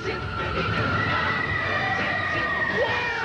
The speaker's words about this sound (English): So why are they screaming? It should got like a fucking 8-foot drop. Like, shut up.